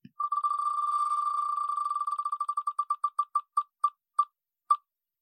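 A spinning prize wheel ticks with rapid, high, beep-like clicks that start as a near-continuous blur and gradually slow, spacing out until a final few ticks and a stop. No talking.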